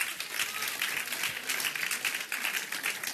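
Steady audience applause for a man being introduced, a dense rattle of many hands clapping at once, holding fairly even in loudness throughout with no voices over it.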